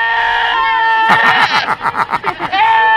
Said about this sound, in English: Back in 2013, goats screaming like humans. Very popular. Remember that.